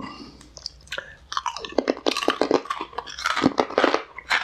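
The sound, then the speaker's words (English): Crunching as someone chews crisp, crunchy food, a steady run of sharp, irregular bites and cracks lasting several seconds with no talking. “These are really crunchy.”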